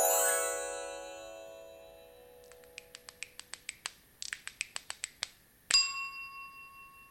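A wind chime sound effect: a ringing metallic tone fades out, then a quick run of bright, tinkling strikes rises and falls before one final clear chime rings and slowly decays. No voices.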